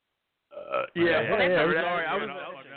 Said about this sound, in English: I was burping.